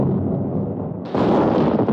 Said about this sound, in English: It was late evening, and from a pitch-black sky, what appeared to be a shooting star streaked in from an easterly direction. Within seconds, there was an almighty explosion from the direction of Southend.